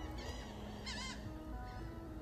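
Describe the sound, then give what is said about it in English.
Seagulls give a few squawking, laughing cries, one louder call standing out in the middle over a steady background wash, with no one speaking. “And the laughing seagulls fly on by.”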